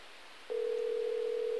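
After a half-second of faint hiss, a telephone line tone switches on and holds one steady mid pitch, loud and unbroken to the end, with no voices, as a phone call is placed to X Games athlete Coco Zurita.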